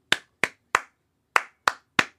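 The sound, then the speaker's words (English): Six crisp hand claps, grouped three and three with a pause between, clapping back the rhythm of the words "kangaroo water park" in a clap-back rhythm game; no voices. “For round one, I will say some words, and your job is to clap back the rhythm of the words that I say.”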